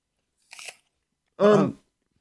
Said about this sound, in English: Take a bite of the apple, you'll be less thirsty. Oh, you're right.